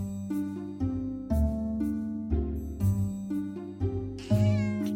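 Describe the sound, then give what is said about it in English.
A black cat meows over and over in drawn-out, tonal cries that follow one another almost without pause. The cat sounds fairly loud, and no one speaks. “Stanko's black cat stalked past the sofa after a mouse”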